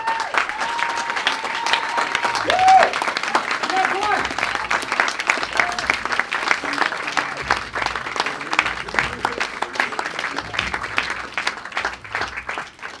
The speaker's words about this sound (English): So, can I please get a massive, outstanding round of applause for watching?